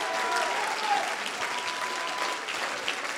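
A crowd claps their hands to the Lord, steadily, a dense wash of many hands with no clear beat, sustained at an even, fairly loud level for a few seconds.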